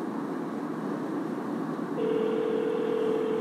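A steady telephone ringback tone on an outgoing call placed while driving to work starts partway through and holds to the end, a clear electronic hum over a constant background hiss, with no one talking.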